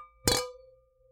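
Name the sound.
glasses clinking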